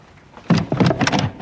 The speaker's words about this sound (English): I'm coming in, aren't I? It's that stupid bleeding handle on the door. You want to get it fixed? Yes. I meant to.